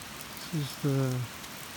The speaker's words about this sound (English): All just before dawn, and on the Terra Nova project on Brazil, it's been raining most all night, and it continues to rain now.